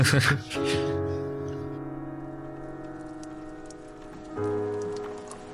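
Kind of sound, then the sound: nature, rain falling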